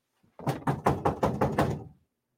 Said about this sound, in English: I hear my staff talking in the background. We got a little on-air live thing to prevent this very thing from happening. But I don't know if it's not turned on or they don't notice it. But I'm going to knock on the window because it's distracting me.